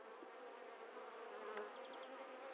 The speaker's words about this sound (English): I'm hearing buzzing now. Crikey, they've got giant teeth. I can see some hornets buzzing around the nest now. Wow, that's some loud buzzing.